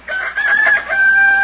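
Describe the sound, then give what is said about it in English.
A rooster crows once, loud, a sustained strained cock-a-doodle-doo that holds a long high note at the end, with no talking, in the radio show The Great Gildersleeve. “Listen to that, Bertie. Isn't it beautiful? Good morning, Rooster.”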